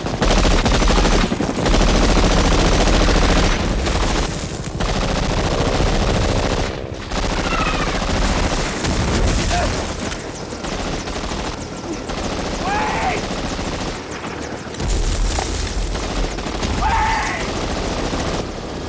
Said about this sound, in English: Walden's still shooting, holding off the enemy while they're getting on the chopper